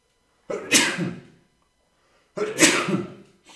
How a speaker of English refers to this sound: Hold on. I'm about to sneeze, guys.